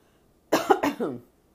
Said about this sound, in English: Sorry, allergies, clear my throat.